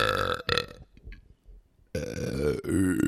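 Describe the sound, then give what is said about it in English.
Loud, close-up burps, a couple of short ones at the start, then a brief quiet gap with small mouth noises, followed by two longer, deep, rumbling belches. “It was just ASMR burping.”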